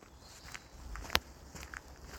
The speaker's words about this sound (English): So I'm walking along what used to be an old railway, I think, between coal mines and Newcastle, or Leamington, I think it was. And so it's a nice little walk through the countryside near the river.